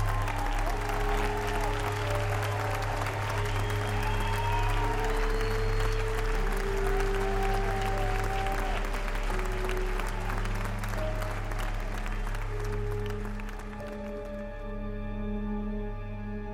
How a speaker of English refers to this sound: And then it smiles as you hear chanting, "All hail the shining god."